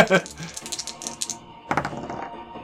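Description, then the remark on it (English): Dice clatter across a hard tabletop in a quick run of small clicks and knocks, then a second brief rattle, with faint voices underneath. “Although that was a good roll for bad dice.”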